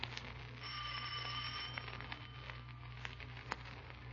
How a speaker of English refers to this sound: Ring the bell. Don't hesitate, Markheim. Ring it.